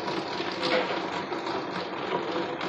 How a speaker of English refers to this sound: Let me capture this. And here's the rain.